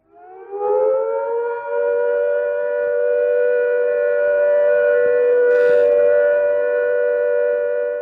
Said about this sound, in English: Here is the all-clear warning.